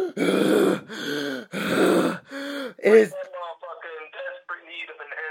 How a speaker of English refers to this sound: But you could hear him breathing so hard. He is so exhausted. You just hear these.